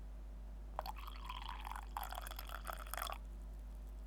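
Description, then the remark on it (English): Freshly brewed herbal tea is poured from a small teapot in one steady stream of about two and a half seconds, with a brief break midway and a rising, gurgling pitch as the cup fills. Moderately loud, no talking. “Today's episode is brought to you by the beverage herbal tea, which I just brewed. I've now got it in my little teapot.”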